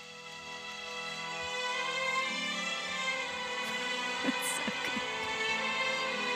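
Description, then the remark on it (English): Orchestral film score music plays alone, with dense sustained chords that swell slightly in loudness, and a few sharp accents and a bright crash-like burst toward the end. “And I think it's a wonderful piece of music.”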